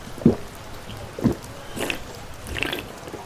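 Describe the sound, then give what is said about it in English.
A drink is poured into a glass in a few short glugging splashes spaced about a second apart, moderately quiet, with no voices. “Pour out some more.”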